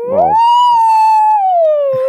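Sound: voice imitating whale noises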